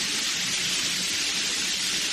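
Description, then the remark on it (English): Shower water runs in a steady, unbroken hiss, a dense bright spray with a soft rumbling undertone that holds an even level throughout, with no voices. “I'm gonna take a shower.”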